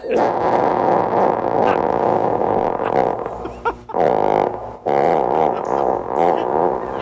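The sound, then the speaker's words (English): A long, loud, low fart rumbles and flutters for about seven seconds, its pitch wobbling, with two brief breaks before it resumes, with water dripping in the background. “That farter died 30 years ago. I love the water dripping in the background.”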